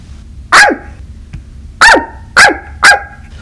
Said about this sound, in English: I'll swallow you first, you little pee-wee dog. Shame on you. You let that little dog alone. Let him alone.